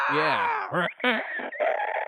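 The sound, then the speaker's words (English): A person imitates a feral hog's squeal: a loud, strained, high-pitched screech in several wavering bursts over about two seconds, harsh and nasal with sliding pitch. “And you hear that time and time again, almost like this feral, hoggy squeal, but human.”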